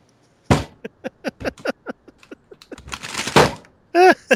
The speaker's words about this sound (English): I knocked over a thing with that desk slam.